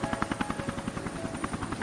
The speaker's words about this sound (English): And then you look, and coming over a grouping of trees, you see three helicopters coming and setting down.